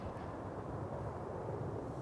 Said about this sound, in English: But I can hear the motorway just roar. It's non-stop.